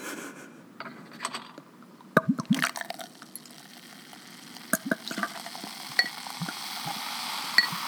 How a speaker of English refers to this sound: Gonna pour it into my glass. Ooh, a nice slow break.